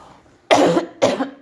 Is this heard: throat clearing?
yes